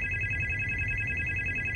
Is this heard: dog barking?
no